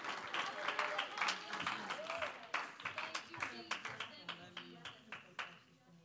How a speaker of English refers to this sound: let's just clap our hands as we welcome Candy to the platform